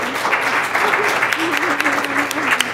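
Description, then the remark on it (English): Steady audience applause for a panel at a briefing, dense crackling clapping throughout at fairly even loudness, with a faint murmur of voices underneath. “Tremendous panel. I think they all deserve a round of applause.”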